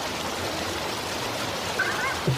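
Steady rushing water of a water slide fills the whole moment, a dense, even whoosh, constant, with a couple of faint splashy blips near the end, as Judge Hodgman takes the water slide down to his chambers.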